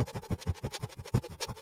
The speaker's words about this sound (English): Another way to do it is same position with your mouth. So you're just going to breathe in and out as fast as you can with your mouth like this.